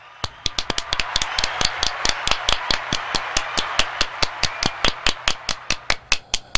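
Steady hand clapping: a quick, even run of sharp claps, roughly four or five per second, with no voices and a soft hiss underneath.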